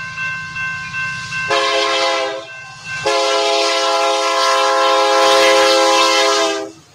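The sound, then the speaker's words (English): A train horn blares twice, a short blast followed by a longer sustained one, loud, with a low rumble of the train underneath at the start. “And see, if y'all didn't know, we are addicted to the sound of a train blowing.”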